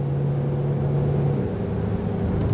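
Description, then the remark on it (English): The engine of a used 12-year-old Explorer bought at a dealer auction runs steadily while driving, a low continuous rumble with a faint hum that shifts slightly in pitch, with no talking. “Drives good. Doesn't sound terrible.”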